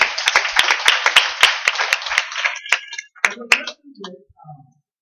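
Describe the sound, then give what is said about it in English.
A church audience breaks into a dense round of applause for its worshipers, many hands clapping at once, then thins to a few scattered claps as faint voices come in near the end. “Let's give all our worshipers a round of applause.”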